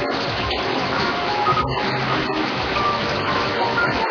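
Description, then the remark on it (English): A kitchen sink tap runs hot water steadily at full flow while some cooking oil is poured out, a continuous hiss and splash of water with small clatters in the stream. No voices. “So I'm gonna turn my kitchen sink on hot and we're gonna pour some of this oil out.”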